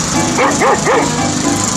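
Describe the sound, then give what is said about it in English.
A dog named Rover barks three times in quick succession, clear, followed by a couple of softer barks, all over a steady hiss of background noise. “Well, there's that Rover now. Rover, get out of here.”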